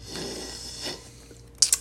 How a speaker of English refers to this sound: Got to take a little sippy sip. Sippy sip. Yeah.